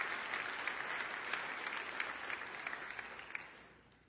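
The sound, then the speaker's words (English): An audience claps together in praise of the Lord in the morning, a dense, steady wash of many hands that holds for a few seconds and then gradually fades out, with no voices over it. “Let's give the Lord a hand clap of praise this morning.”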